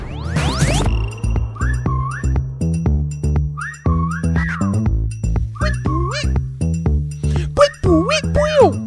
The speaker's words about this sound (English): I can't whistle. That is one of the things I've never been able to do. Same. My whistle sucks. I can't do it. I know. If I needed to get somebody's attention, they would be like, that sounds like some leaves blowing in the wind, that type of whistle.